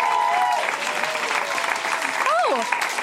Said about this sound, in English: So really, really well done to absolutely everyone who is up on this stage tonight. Can everyone give them a huge round of applause? Thank you. Thank you. Really well done, everyone.